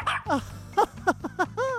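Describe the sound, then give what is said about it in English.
A quick run of about six short, yelping dog barks in close succession, falling in pitch, likely a person imitating a dog called Rover, with a faint low hum underneath. “Now for pets, for cats, for dogs, for goldfish, and your electric eel. How are you feeling, Rover?”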